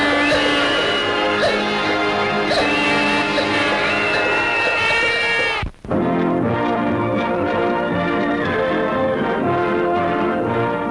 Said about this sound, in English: In just 30 more seconds, the new year will be here. Keep your eye on the clock. And get ready to cheer and shout hello to a brand new year. Get ready. Get set. It's 12 o'clock. Happy New Year.